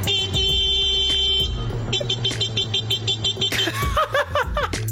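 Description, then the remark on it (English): A man mimics a car horn with his voice, producing a run of sharp, loud beeping honks that sound convincingly mechanical, followed by chuckling laughter. “The noise you're going to hear sounds like a man being interrupted by a car. He isn't being interrupted by the car.”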